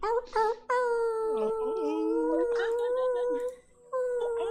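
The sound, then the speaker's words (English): A person imitates a wolf howl with long, sustained, wavering vocal tones that rise and dip, breaking briefly before resuming, during an online group session over Zoom. The voice is loud, with no other talking. “sending some love, make some noise, make a wolf howl,”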